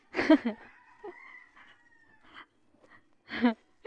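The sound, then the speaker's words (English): Chickens call outdoors in the morning, in a cold spot with many trees and plants: a loud harmonic squawk at the start, a thin drawn-out crowing tone, scattered softer clucks, then another strong squawk near the end, with quiet gaps between. “See, you can hear the chickens.”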